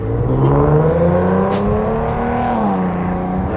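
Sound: car engine running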